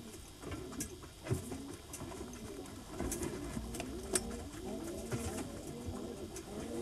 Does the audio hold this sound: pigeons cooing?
yes